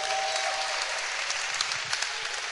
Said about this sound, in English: Clap your hands for that point.